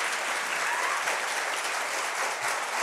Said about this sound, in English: But would you give them a big round of applause as they come and join us on stage?